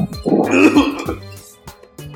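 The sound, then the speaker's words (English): A person vocally imitates a cough: one rough, drawn-out hacking burst, followed by a few faint breathy sounds and clicks. “And he coughs.”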